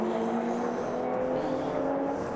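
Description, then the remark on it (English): The number 30 Fricadelli Racing race car's engine roars loud down the main straight, turning right at turn one around the Mercedes Arena. It is a steady high-pitched drone with strong tonal harmonics holding for a couple of seconds, with no voices over it. “Down the main straight comes not the race leader but the sister car from Fricadelli Racing, the number 30 machine.”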